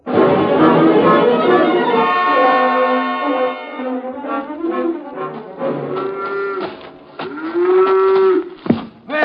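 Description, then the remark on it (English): A cow being milked on a farm moos loudly, starting with a long drawn-out low, then several shorter, uneven calls and one more sustained moo near the end, with no talking. “Let go of that cow for a minute,”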